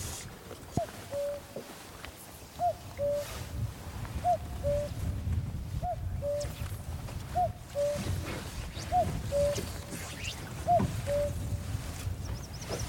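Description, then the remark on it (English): A common cuckoo calls its two-note cu-coo about seven times in a steady rhythm, fairly distinct over a low outdoor rumble of wind or running water, on a damp Scottish summer's day with light rain. “Wow, that's really good, that cuckoo.”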